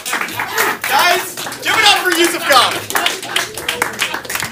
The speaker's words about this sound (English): All right, decent clap off response at least.